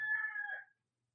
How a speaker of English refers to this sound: If you feel any supportive roosters, they are simply here saying, yes, yes, yes, it is time for this.